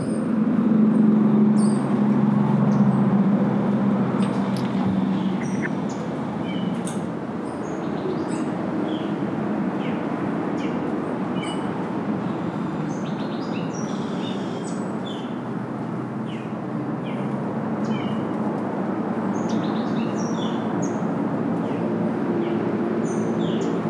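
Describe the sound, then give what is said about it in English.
Scattered high chirps and tweets of birds and little animals in Costa Rica pepper a steady outdoor background, with a continuous low rumble of passing cars running underneath for the whole stretch. “I am in Costa Rica right now, and there's all these birds, all these little animals.”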